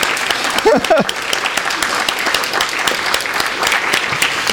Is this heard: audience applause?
yes